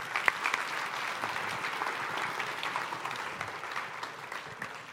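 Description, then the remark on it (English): Sustained applause from a sizable audience for a group of women, a dense, steady patter of many hands clapping at once, even in loudness for the whole stretch, with no one speaking over it. “Round of applause for these ladies.”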